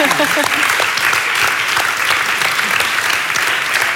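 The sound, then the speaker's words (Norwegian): Steady applause fills the whole clip, a dense crackle of many hands clapping at an even loudness, with a brief cheer or voice at the very start. “Och jag tror vi ska bara få en sån skicklig applaus på det du har fått till.”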